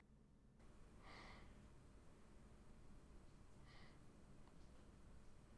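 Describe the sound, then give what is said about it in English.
Two short, breathy gasps about two and a half seconds apart, each a quick sharp intake of air over a steady, rumbling background hiss. No one speaks. “That gasp.”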